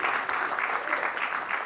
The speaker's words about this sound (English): Oh, you can clap. You can clap. You want to clap.